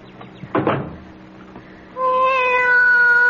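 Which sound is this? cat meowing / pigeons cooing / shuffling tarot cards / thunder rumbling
cat meowing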